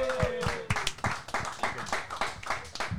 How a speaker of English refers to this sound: All right, everyone in the house, clap it up for Isaac Updike.